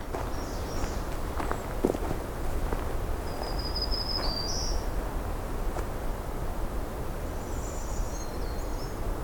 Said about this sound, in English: Brown creeper song too.